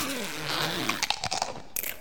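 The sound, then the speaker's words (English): Crisp, wet crunches of a werewolf biting into an apple, several sharp bursts in an uneven chewing rhythm, following a low, wavering voiced drone at the start. “Then why is it eating apples?”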